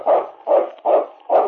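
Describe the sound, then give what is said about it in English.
Yukon King, a husky lead dog of the snowy Northwest, barks four times in a steady rhythm, each bark a full, loud woof with a short gap between, and no voices around it. “It's Yukon King, swiftest and strongest lead dog of the Northwest, blazing the trail for Sergeant Preston of the Northwest Mounted Police in his relentless pursuit of lawbreakers.”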